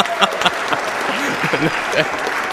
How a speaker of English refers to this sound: You could have clapped. I heard somebody try.